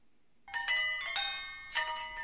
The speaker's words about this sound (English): Sound effect. I can't spell sound effect. Chinese bell ring.